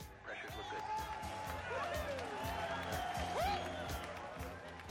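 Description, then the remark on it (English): A room of mission controllers in a film cheers and whoops during the launch of the Ares 5 crew's rocket, many overlapping voices shouting and calling out with rising pitches, loud and continuous for the whole stretch. “Man, these mission controllers cheer in the middle of the launch.”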